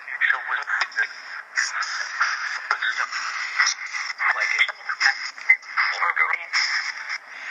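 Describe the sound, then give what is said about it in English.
Tinny, band-limited radio noise rapidly sweeping through stations: a continuous stream of choppy static bursts and clipped snippets of voices, as a spirit box used for paranormal communication scans. Steady, moderately loud. “you get a lot of paranormal stuff from one of these boxes”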